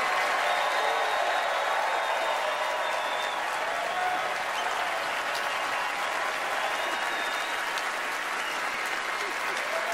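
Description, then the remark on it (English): A large audience applauds Meryl Streep, clapping steadily for the full stretch, a dense, bright wash of applause holding an even loudness with faint cheers or whistles rising above it now and then. “Everybody, please join me in giving Meryl Streep a totally undeserved round of applause, will you?”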